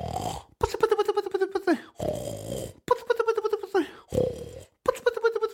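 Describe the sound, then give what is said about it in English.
A voice imitates the loud snoring of a 154-year-old man with a long white beard, lying asleep in a cave: three drawn-out, rattling snore cycles, each a buzzing breath followed by a lower wheezy one, with no other speech. “And as he was snoring, well, his beard was flapping there with his snore.”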